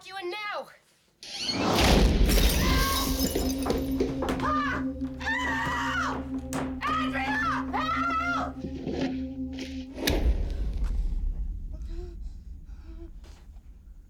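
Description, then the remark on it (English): A woman screams and whimpers in panicked, wavering bursts over a low, steady droning score, with rumbling swells at the start and end, from a horror film trailer in which she is in the dark with a lit match. “Just gonna leave you with her in the dark with a lit match, freaking out.”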